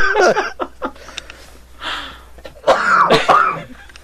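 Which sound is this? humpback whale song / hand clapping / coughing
coughing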